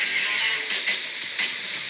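Steady, loud static hiss concentrated in the high range, a constant rushing noise with slight surges in intensity and no voices, simulating what a person with tinnitus hears.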